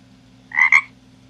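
A frog croaks once, a short raspy call split into two quick pulses, clear against a low steady background hum, with no talking.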